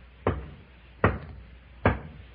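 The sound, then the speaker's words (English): Three slow, evenly spaced knocks on a refrigerator door, each a solid thump with a short dull decay, separated by quiet pauses with no talking. “Line up in front of this refrigerator door.”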